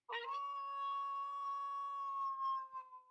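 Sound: howling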